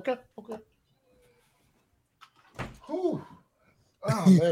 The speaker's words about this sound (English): Oh God, hold on. Let me close this door real quick.